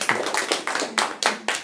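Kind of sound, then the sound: crowd, group clapping applause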